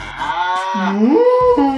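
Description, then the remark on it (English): A loud cow moo sound-effect button, pressed during a Cow Appreciation Day broadcast, with a rich harmonic drone that rises and bends in pitch over nearly two seconds, with no talking. “We got Ballad pressing all kinds of moo buttons over there.”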